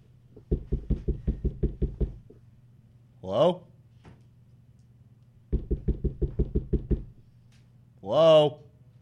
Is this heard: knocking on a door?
yes